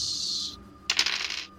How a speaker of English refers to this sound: Oh, shit. What a crap dice roll.